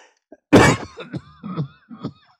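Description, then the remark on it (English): One loud, harsh cough bursts out close to the mic, followed by a few smaller, rougher coughs and throat sounds trailing off over the next couple of seconds. “COVID cough.”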